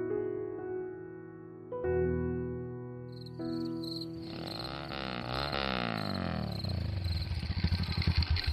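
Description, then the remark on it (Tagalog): A motorcycle engine rumbles as it pulls up and stops in front of a house, its pitch rising and falling as it revs, then settles into a rough idle, heard over a steady background music bed with no talking. “Teka, sino naman tong motor na tumigil sa tapat ng bahay?”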